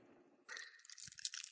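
Crinkly rustling of a plastic bag starts abruptly and continues with scratchy bursts, joined midway by a few soft low knocks, as a garment on a hanger inside the plastic bag is handled.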